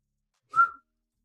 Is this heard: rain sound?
no